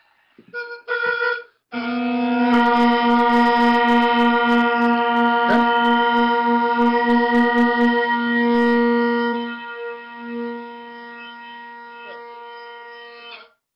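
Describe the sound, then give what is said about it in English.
Sustained, buzzy instrument drones sound wildly out of tune, producing a steady wavering beat that pulses rapidly, then the instrument is given a gross tuning adjustment, moved aggressively until the drones sound the same, and the tone settles, growing smoother and quieter before stopping. “But we're going to use our ears a little bit, and we're just going to move this in a direction where the drones start to sound the same.”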